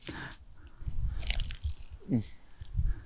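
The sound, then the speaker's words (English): Crunchy bites into a fresh fried samosa filled with potatoes, carrot and cumin, at the 11th hole: a sharp crackle at the start and another burst about a second later, followed by soft, muffled chewing with no talking. “It's crunchy. It's chewy.”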